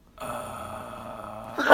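A single sneeze: a drawn-out, voiced build-up lasting over a second, then a sharp, louder burst at the very end. No one speaks.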